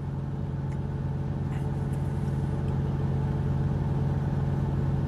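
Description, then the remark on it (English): A truck engine with a badly slipping transmission drones steadily and loudly, a constant low hum with a faint whine above it and no speech. “the transmission is slipping like crazy right now”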